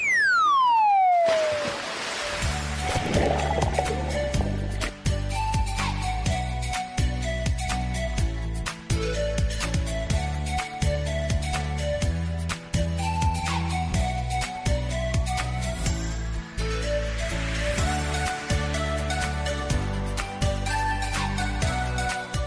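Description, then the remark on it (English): A short instrumental music interlude on River Radio plays loud, opening with a falling swoosh before a steady beat and sustained bass notes carry through to the end. No one speaks. “That's a lovely little bit of music, isn't it?”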